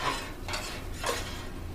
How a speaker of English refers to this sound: All right, so I just pulled the veggie mixture off of the hibachi. I'm just going to dump the pork on here real quick. Give it a quick little finish. And then put it right on top.